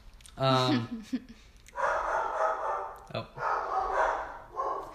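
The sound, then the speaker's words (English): Dogs bark at someone outside, opening with a sharp, ringing bark, then breaking into a rough, continuous run of barking that carries on to the end. “Our dogs hear somebody outside.”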